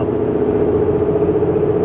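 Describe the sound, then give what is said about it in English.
A steady, low droning rumble fills the cabin of a moving car, a constant road and engine hum with no voices and no breaks in the sound. “I'm in my car, so I can't really fact check that right now.”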